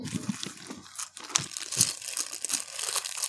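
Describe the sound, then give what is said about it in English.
Continuous crinkling and rustling of the plastic wrapper of a Rustlers microwave burger, with irregular crackly bursts and small crunches over about three seconds, no voices present. “Why are you rustling, man?”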